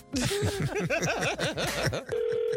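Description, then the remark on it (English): A quick, bouncy run of rising-and-falling vocal sounds, like a giggling jingle, opens a King of Pranks prank phone call segment. It gives way to a steady, even electronic telephone tone that holds for the last half second. “it's time for the King of Pranks with today's prank phone call”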